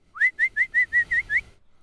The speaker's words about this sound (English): Can I just whistle quickly? You can.